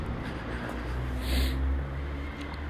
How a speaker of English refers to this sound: Oh gosh, I can hear foxes screaming. They've got a funny sound, haven't they? Quite a sort of murderous sound. It's not very nice, but if you know what it is, then it's then you're okay.